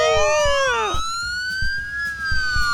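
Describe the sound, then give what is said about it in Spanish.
An ambulance siren wails loudly, its pitch sweeping down then holding a high steady tone, with faint low rumbles and knocks underneath and no one talking. “Ya, le trajimos una ambulancia.”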